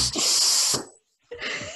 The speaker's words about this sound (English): Our dog just sighed like a war veteran. Like, we were here, and then suddenly you just hear Molly.